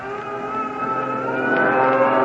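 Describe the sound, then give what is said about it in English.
A fighter plane's engine roars steadily, a droning, buzzing hum that grows slightly louder and rises in intensity as it takes off, heard alone with no voices. “There goes our first fighter plane.”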